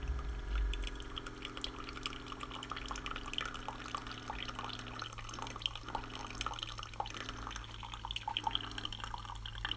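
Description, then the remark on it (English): Coffee drips steadily into a pot, a quiet patter of small irregular drops over a low hum, soft, with no voices. “The sound of the dripping coffee.”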